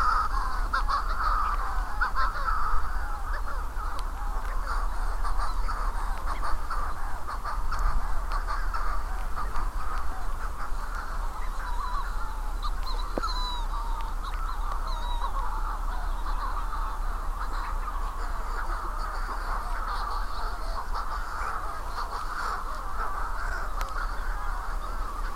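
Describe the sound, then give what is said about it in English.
A dense, continuous chorus of harsh, croaking seabird calls from pairs on an island trying to find each other, many birds calling back and forth at once in overlapping cawing squawks, steady and loud throughout with no one speaking. “Sorry, but these pairs trying to find each other on this island.”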